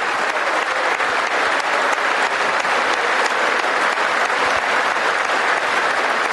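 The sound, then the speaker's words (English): A large audience applauds steadily during a political speech for several seconds, a dense, even wash of clapping that stays loud throughout, with no voices rising above it. “the fucking Republicans wouldn't applaud anything unless...”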